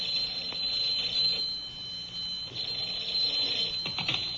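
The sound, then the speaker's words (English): A telephone rings in the Nelson family home just past noon, with the table set for lunch, a shrill, high-pitched, steady ringing that continues for several seconds without pause, fairly loud, with no voices. “And just in time to answer the phone, too.”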